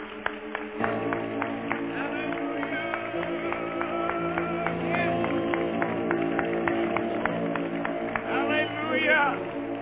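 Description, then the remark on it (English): An audience claps their hands together for the Lord in a sustained burst lasting several seconds, sharp claps rising over a steady bed of voices and sustained tones. “Let's give the Lord a good hand clap.”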